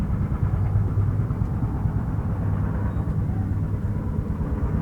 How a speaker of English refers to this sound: But it sounds kind of cool. In some ways, this is better than a music bed to have in the background during a show and a podcast. We can listen to the airplanes in the background, and people can talk about tech topics.